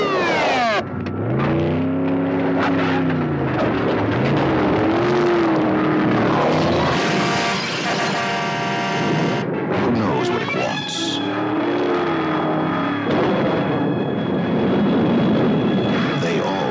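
A loud car engine roars and revs, its pitch climbing and dropping in repeated surges as it speeds past, sustained and powerful from start to finish.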